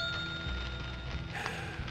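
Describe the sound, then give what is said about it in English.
A small bell rings with a clear, sustained metallic tone that lingers over a dense, rumbling background of kitchen-like clatter and low noise. “But if you change your mind, all you have to do is ring this bell.”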